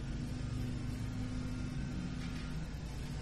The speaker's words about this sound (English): The effervescent nature of lawn mowing or whatever is happening. The dynamic, alive nature of hearing.